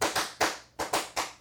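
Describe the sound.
About six sharp hand claps tap out a two-bar syncopated rhythm, as in a musical rhythm exercise, with uneven gaps and a quick pair near the middle, played alone with no voices.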